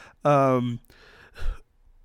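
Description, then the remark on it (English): A loud, voiced sigh close to the microphone, followed by a softer breathy exhale and a low, muffled puff of breath hitting the mic. “Sorry, I'm just breathing into the microphone.”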